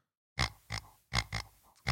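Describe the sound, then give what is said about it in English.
A small blue pig-shaped dog toy gives five short, realistic oinking grunts in an uneven rhythm, loud, after a brief silence, with no talking. “Got my dogs this new little pig toy. It sounds so realistic.”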